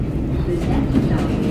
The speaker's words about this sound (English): Hey, we could have been on that train.